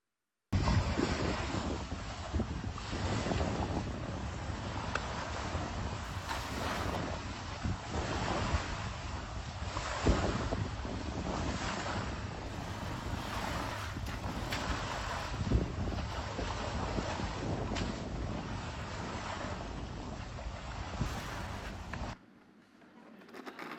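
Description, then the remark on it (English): Ocean surf roars steadily against the shore while strong wind buffets the microphone, loud with no voices, as a man tries to mop up the sea with a mop and a bucket; then the sound drops away abruptly near the end. “Do you think he was able to take a mop and a bucket and mop up the sea?”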